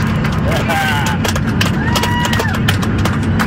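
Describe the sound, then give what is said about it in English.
A smattering of scattered, irregular claps from passengers on a plane in flight, after the pilot announces the mask mandate is over, rises over a steady low engine rumble in the cabin, with voices chattering and calling out underneath. “Smattering of applause, and the pilot says, "You can take off your masks immediately."”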